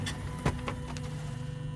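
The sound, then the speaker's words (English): Someone sitting in an office chair wheels around on it, the wheels rolling across the floor in a steady low rumble broken by a few sharp clicks and rattles, with no voices. “I'm sitting in the office chair. I'm wheeling around on it.”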